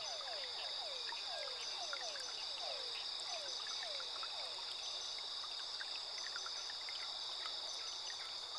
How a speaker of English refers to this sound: captivated by the symphony of sounds emanating from the rippling waters. A chorus of croaks, chirps, and the occasional splash of playful creatures.